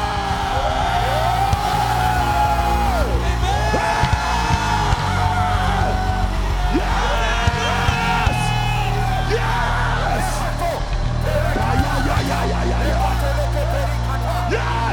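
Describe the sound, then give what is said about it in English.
An audience at a prayer service shouts and yells loudly all at once, many overlapping voices rising and falling in sustained, energetic cries that continue steadily for the whole stretch. “There's a time in this business for noise. Because, you see, only winners shout.”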